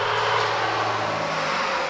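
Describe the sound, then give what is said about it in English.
A large pickup truck speeding at about 60 miles per hour on a 35 mph road roars steadily, a loud, continuous rumble with a low droning hum beneath a broad rushing noise, and no voices. “You're going 60 in this big fuck-off yee-yee truck.”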